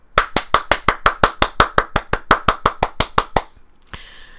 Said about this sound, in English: I hope you all applauded for me right now. I applauded myself. So hopefully you joined me in that.